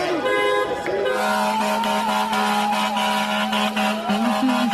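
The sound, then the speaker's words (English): Many vehicle horns blare at once in front of Gracie Mansion in a dense, continuous chorus of overlapping honks, loud and sustained across the whole stretch, with a deep truck horn holding steady underneath. “I will be joined by a few hundred individuals who will be coming here with their vehicles, honking their horns in front of Gracie Mansion.”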